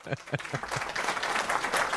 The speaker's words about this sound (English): Like, hey, man, round of applause. I don't have the button yet. But it's oh, coming. I got you. Hold on, I got you. Hold on, let me get you a round of applause, man.